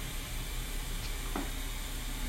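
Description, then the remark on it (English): A refrigerator runs with a steady, unbroken hum and a low drone beneath a wash of faint hiss. There is no talking, just the constant appliance noise throughout. “Girl, not my refrigerator making all this noise.”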